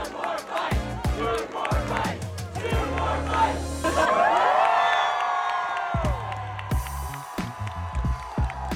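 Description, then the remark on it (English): A large crowd cheers loudly and continuously for a man eating a rotisserie chicken, with whoops and rising shouts swelling in the middle, over a steady pounding of rhythmic thumps like stomping or clapping. “I'm gonna play the audio from the crowd cheering.”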